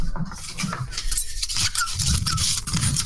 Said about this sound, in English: with these election results, why are you cutting them up now? Just love cutting paper. Hold on. Here we go.